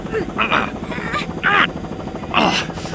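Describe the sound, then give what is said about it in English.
A steady helicopter engine and rotor drone runs throughout, continuous, while people shout over it in short bursts. “turn the chopper around.”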